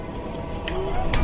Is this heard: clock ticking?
yes